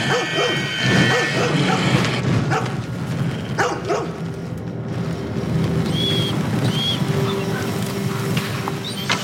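A few dogs bark and yip in short bursts against a dense, noisy outdoor background, the barks partly blended into the steady din.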